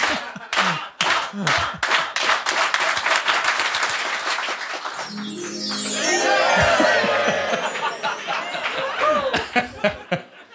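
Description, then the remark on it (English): A live show audience claps in a steady rhythm that quickens like a run-up, then breaks into loud applause mixed with cheering and laughter, with scattered claps continuing to the end. “So let's clap, clap it in like a run up.”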